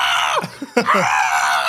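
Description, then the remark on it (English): A person lets out a loud, drawn-out imitation of a man's yell, with a couple of brief breaks before the strained shout carries on to the end. “As he got better and better at the job, and it was just like, oh my God, he would always do like the … yell.”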